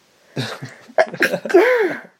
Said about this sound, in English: Hold on, I'm going to sneeze. Okay.